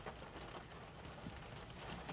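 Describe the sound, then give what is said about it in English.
Soft, steady rain falls outdoors in Southern California, a faint continuous hiss and patter with no voices and a brief low thump right at the end. “You hear the beautiful rain?”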